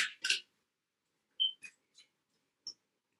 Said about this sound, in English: So I'm going to shuffle these cards.